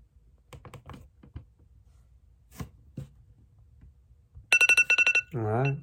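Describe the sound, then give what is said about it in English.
Scattered keyboard clicks give way to a timer's loud electronic alarm beeping in a rapid pulsing burst, then switching to a warbling, wavering tone at the end. “Well, folks, we know what that timer means. It's a reminder of me to turn this off.”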